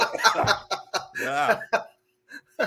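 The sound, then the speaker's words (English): Old men cough in a rapid series of rough, breathy bursts, mixed with some low chuckling, followed by a brief pause and a final short cough. “Just a bunch of old guys coughing.”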